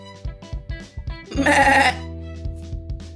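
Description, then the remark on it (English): A single loud, wavering goat bleat rises up near the middle and lasts about half a second, over a steady rhythmic pulsing background that continues before and after. “And you got me all back here tied all up and won't even let me be free as a goat.”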